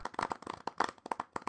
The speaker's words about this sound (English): Clap!